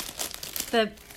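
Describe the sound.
Papery crinkling of packing paper in several quick rustling bursts during the unboxing of a box, while a piece of the paper is being eaten, then a brief tonal voiced sound cuts in near the end.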